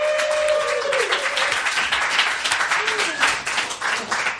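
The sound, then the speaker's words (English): An audience applauds the two debaters after a debate in Logan Square, dense clapping at a strong, even level, with a few faint whoops and voices rising through it before it tapers slightly. “Another round of applause for them.”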